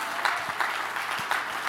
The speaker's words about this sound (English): If you're glad about the church, clap your hands and thank God for the church.